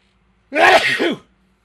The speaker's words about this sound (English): One second, I'm going to sneeze.